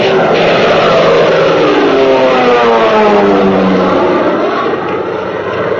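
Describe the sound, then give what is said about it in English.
A fighter plane's engine roars loud throughout during a dogfight, its droning pitch sliding steadily downward as the aircraft swoops past, with no voices. “I got him. Right in the gas tank.”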